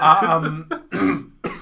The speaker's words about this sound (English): Oh no, he's coughing.